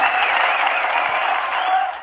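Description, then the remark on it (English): A crowd breaks into steady applause for the We Treat organization, dense overlapping claps holding a fairly loud, even level before tapering slightly at the end, with no one speaking over it. “Matter of fact, I've got to give us a round of applause on it.”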